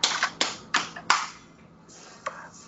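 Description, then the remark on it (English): Someone slaps a watermelon with an open hand before cutting it up: four sharp, fairly loud smacks in a steady rhythm, then a pause and one more slap, with no talking. “Somebody's hitting a watermelon over here.”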